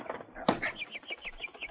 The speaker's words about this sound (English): Ah, well, good heavens, look what just flew in. It has wings, but it isn't a bird. It's a little creature, a sprightly-looking little fellow.